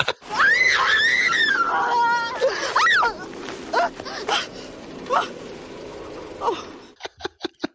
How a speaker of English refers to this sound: It's the fact that she tumbles down this very gentle incline, doing the female equivalent of a Wilhelm scream. It's a Wilhelmina scream.